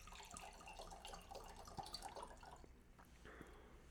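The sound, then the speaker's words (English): Svalbardi bottled water pours steadily into glasses, a continuous splashing trickle with bright gurgling tones rising as it fills, then tapering off near the end. “So everybody can hear, we are pouring Svalbardi into the glasses.”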